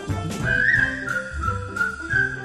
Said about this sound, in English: Forget your troubles, try to be just like the cheerful chickadee, and whistle while you work.